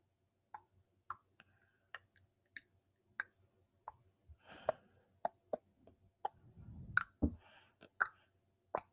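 A series of crisp tongue clicks made as ASMR, roughly one every half second, with some soft wet mouth noises and a low rumble partway through; no one speaks.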